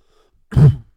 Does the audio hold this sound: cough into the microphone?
yes